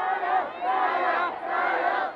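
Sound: protest crowd shouting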